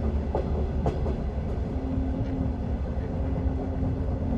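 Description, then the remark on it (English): A train rumbles steadily along the rails as it slows, with a few sharp metallic clacks early on and a faint sustained whine over the heavy low-end drone. No voices. “He could feel the train slowing beneath their feet.”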